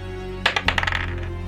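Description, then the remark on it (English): Dice clatter across a hard table, a quick burst of sharp taps that bounce and settle within half a second, with no one speaking over them. “Oh, I heard that dice roll.”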